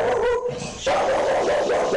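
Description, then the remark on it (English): A dog barks and yelps loudly, its voice stretching into drawn-out, whiny tones across a couple of seconds, with no one talking. “Cool dog.”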